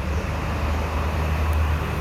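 Steady low rumble of city traffic in Washington, DC, heard from inside an apartment, a continuous wash of road noise with a deep hum underneath and no distinct individual vehicles or voices.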